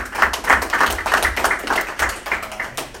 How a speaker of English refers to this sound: Cool. Clap it up